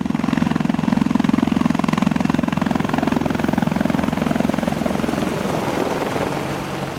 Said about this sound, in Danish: Udviklingen af en ny europæisk angrebshelikopter er bare et af projekterne. Her var det en tysk Tiger Eurocopter, vi hørte blæse forbi.